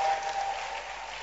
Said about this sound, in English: Clap your hands.